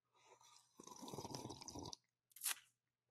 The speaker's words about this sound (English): I'm gonna take a little sip of my coffee here. Maybe you can hear this in the mic. Ready?